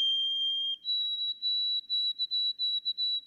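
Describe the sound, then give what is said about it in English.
A white-throated sparrow sings a pure whistled song in a farm field in October: one long steady note, then a step up to a slightly higher pitch repeated in a run of short, even notes, clear and alone. “I hear white-throated sparrows singing, and it sounds like the White Mountains in May.”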